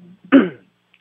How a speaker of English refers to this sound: Now you're clearing your throat!